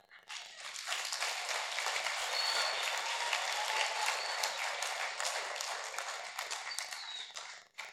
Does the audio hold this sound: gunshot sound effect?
no